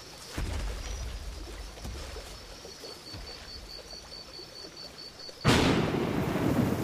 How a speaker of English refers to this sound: A few days, or maybe even a few weeks or months later, a storm hits. The river floods, and the body of our Tyrannosaur is buried in mud and sand.